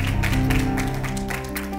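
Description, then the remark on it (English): A crowd gives Jesus a hand clap of praise, clapping together in steady, rhythmic applause, the claps landing in a quick regular beat over sustained organ-like musical tones that hold throughout. “Come on, can you give Jesus a hand clap of praise?”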